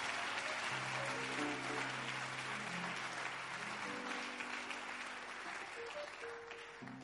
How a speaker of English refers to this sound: Increase that clap offering if you are here with me. Increase that clap offering if you are trusting God.